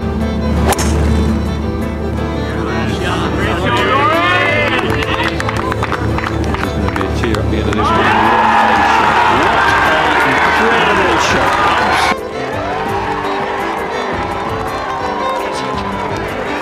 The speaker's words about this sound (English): roars from the crowd as Roars delivers on 16